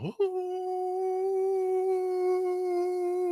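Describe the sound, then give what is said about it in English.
A loud, almost deafening monster howl coming from Central Park holds one steady, resonant pitch with rich overtones for about three seconds after a sharp onset, with no one talking over it. “As you guys turn back around, you all hear a howl that is like almost deafening.”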